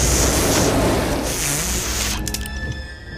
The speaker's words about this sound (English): Well, they really paid a lot for that, those rain machines. God damn, it is unnaturally pouring.